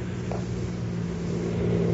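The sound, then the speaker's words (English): A car driving with its lights turned off hums with a low, steady engine drone that grows slightly louder as it heads this way, with no voices over it. “Sounds like a car heading this way.”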